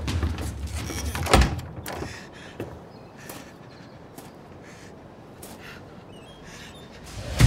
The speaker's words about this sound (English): Door just opened. Someone's coming out, male, Latino.